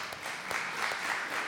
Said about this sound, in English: Isn't that amazing? A round of applause.